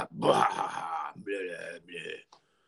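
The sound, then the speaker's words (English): A man clears his throat in three rough, guttural bursts, a long gravelly one followed by two shorter, lower rasps, loud and alone with no talking. “Clear my throat up.”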